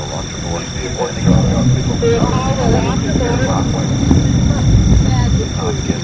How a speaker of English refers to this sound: Those engines had a pretty good roar to them. Notice it didn't disturb the crickets, though. Not at all.